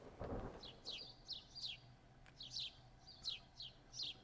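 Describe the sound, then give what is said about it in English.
Birds chirp in a steady series of bright, quick downward-sweeping calls, repeating every half second or so over a low background rumble, with a brief deep thud at the start. “Birds are part of the weather.”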